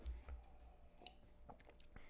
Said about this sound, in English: Well, I'm going to have a small sip. All right. I'm just going to try.